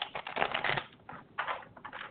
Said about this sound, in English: And, one more time. Let's shuffle these cards really well.